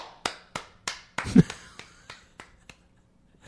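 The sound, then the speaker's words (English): A handful of sharp, single claps ring out in an uneven rhythm, about a dozen quick slaps that gradually thin out and fade, with no voices. “I was just the applauding.”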